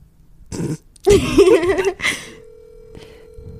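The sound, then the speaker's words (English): A phone call rings out with a steady, low electronic tone holding for over a second, preceded by a few brief bursts of noisy sound and a wavering tonal burst. “Damn, it's like ringing.”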